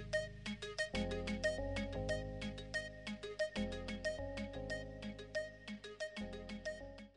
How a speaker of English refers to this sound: Been a while since we heard a beep.